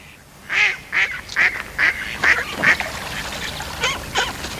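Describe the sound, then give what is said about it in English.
A duck quacks loudly, about six rapid, evenly spaced quacks followed by a brief pause and two more. No one speaks. “Sorry, me duck.”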